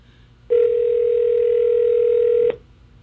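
A steady telephone dial tone, heard as a call is placed, hums for about two seconds, loud and unbroken, starting and stopping abruptly, with faint background noise before and after.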